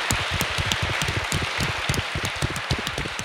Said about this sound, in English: And my God, this theater is beautiful, right? Let's give Sixth and I a round of applause.